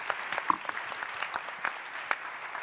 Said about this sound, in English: And a big round of applause for Bret Stephens, who has to leave us.